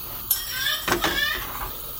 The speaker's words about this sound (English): You should be able to start to hear the sizzle coming from the cheese toastie at this stage. Clamp it down with a... what's that, a fish knife? A sort of spatula. Frying up a treat. Chocolate and cheese.